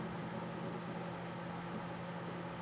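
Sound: microwave oven running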